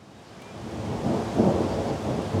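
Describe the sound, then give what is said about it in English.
A steady hailstorm roars outdoors in Orvada, heard from under the awning of the town's only school, with thunder rumbling low beneath a dense wash of hail and rain that swells slightly louder partway through. No one speaks. “Nothing like a little hail to start an outdoor interview where I found myself hiding under the awning of Orvada's only school.”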